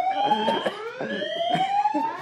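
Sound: fire alarm sounding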